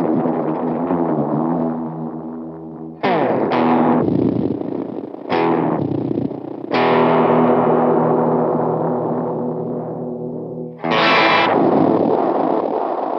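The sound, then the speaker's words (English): A distorted electric guitar plays through an odd, heavily processed effect, dry with no reverb. Several sustained chords ring out, each cut off abruptly before the next strike, loud. “Can you hit me with a weirdie? Like the weirdest setting?”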